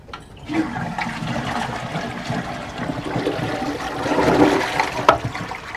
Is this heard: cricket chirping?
no